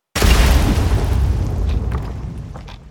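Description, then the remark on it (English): A single loud explosion blast bursts in abruptly with heavy low rumble, then slowly decays over a few seconds into a fading, echoing roar. No voices are present. “And the sounds of muffled weeping are lost amid the echoes of the blast.”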